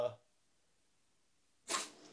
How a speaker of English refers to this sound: My cat's sneezing. It's weird. He's got something. Not doing well.